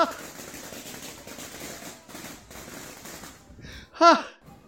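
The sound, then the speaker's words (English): A rapid, dense string of balloons tied to a rope popping as the rope is fed into a box, used in place of fireworks, crackling like firecrackers for several seconds before trailing off, followed by a brief loud voiced exclamation. “They're feeding this rope with all these balloons tied to it into a box.”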